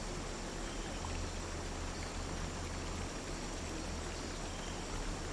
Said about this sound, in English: The calming sensation of the waterfall softening the muscles in your face.